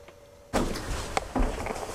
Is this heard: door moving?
yes